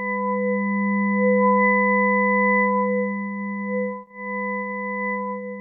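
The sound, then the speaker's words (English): A steady, humming electronic drone built from several stacked pure tones, a low buzzy fundamental with fainter higher overtones, holding almost unchanged with a brief dip before resuming; a sonification of NASA's Messenger spacecraft measurements of waves created by the solar wind in Mercury's magnetic field. “This sound has been created from measurements taken by NASA's Messenger spacecraft. Here, the solar wind creates waves in Mercury's magnetic field, like wind blowing over the ocean.”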